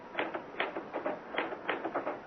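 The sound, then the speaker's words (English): Rapid, uneven clatter of typewriter keys being struck, a quick burst of sharp clicks with brief pauses between runs, moderately loud with no voices. “Ah, why did I never learn to work a typewriter?”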